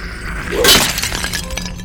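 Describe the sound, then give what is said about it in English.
A sudden crashing shatter bursts out as a skeleton, slashed across the chest, breaks into pieces, followed by a brief scatter of clattering fragments settling. Loud, with no voices. “He shatters in pieces when you strike him. Completely broke.”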